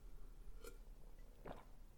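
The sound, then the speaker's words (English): Someone quietly sips water, with two soft, brief wet mouth sounds and a swallow against a faint low hum, and no talking. “I'm going to take a sip of water here.”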